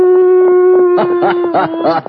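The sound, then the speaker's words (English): A person imitates a coyote with a loud, steady howling tone, broken by a quick series of yipping cries in the second half. “This has to be a coyote.”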